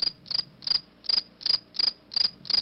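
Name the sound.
crickets chirping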